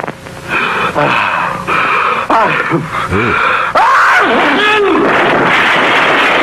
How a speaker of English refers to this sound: I gotta tell you, that's a hell of a sneeze. Let's take back that sneeze.